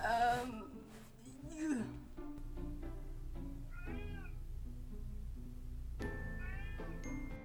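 cat meowing

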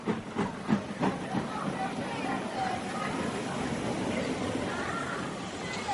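train hissing

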